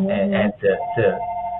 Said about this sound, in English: We never get phone calls and now the phone wants to ring.